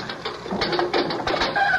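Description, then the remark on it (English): A jail door is unlocked and swung open: a run of sharp metallic clicks and ratcheting clanks, ending in a faint, thin squeal of the hinges. No one speaks. “Please open the door and let me speak to my husband.”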